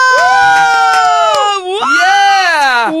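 A single voice imitates a wildly cheering crowd with two long, loud, high-pitched whooping cries, the second rising and falling, separated by a brief break.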